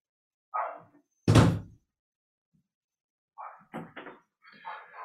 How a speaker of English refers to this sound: Let me close this door.